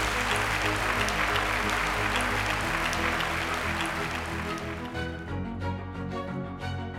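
A large audience applauds steadily after an Intelligence Squared debate recorded live at the IFT First Annual Event and Food Expo, a dense, sustained wash of clapping for several seconds, then the applause thins as music fades in and carries the end.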